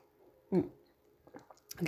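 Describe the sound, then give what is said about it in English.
A quick sip and gulp of tea: a short voiced slurp, a few soft wet clicks of swallowing, then another breathy vocal burst, all fairly quiet with no talking. “I'm going to take a gulp of tea.”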